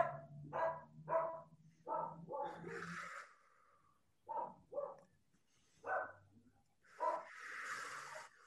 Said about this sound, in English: I'm listening to my dog barking out here. Yeah. All right, I got distracted for just a second.